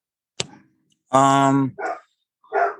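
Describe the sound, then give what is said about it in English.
A dog barks excitedly: one long, loud, strained bark followed by two shorter, rougher barks, preceded by a sharp knock. “hang on, this dog, man.”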